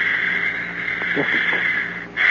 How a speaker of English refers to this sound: The liquid is certainly moving, Dad. Yes, see? And the protoplasm is breathing. Listen.